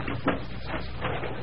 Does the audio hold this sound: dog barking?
no